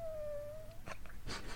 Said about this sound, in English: That sounds like a cat, bro.